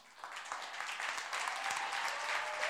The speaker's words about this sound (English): I can't feel the claps in the church. There are claps in the church. I don't feel it. Why am I not feeling clapping? I want to feel clapping, clapping, clapping.